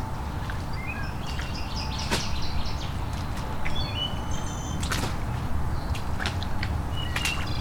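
A wood thrush sings flutey, ringing phrases, with a few sharp clicks scattered through and a steady low rumble of outdoor ambience underneath.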